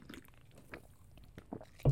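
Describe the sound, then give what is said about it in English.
Someone takes a first sip of a Rockstar energy drink from a freshly opened can, with a few soft, wet slurping and mouth sounds, then a sudden louder thud at the very end. No one speaks. “I actually just took a sip out of that Rockstar for the first time after I popped it.”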